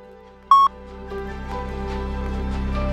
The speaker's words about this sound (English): Any comments you have about the difference between winning and being a winner, I'd love to hear them after the beep, and here's the beep.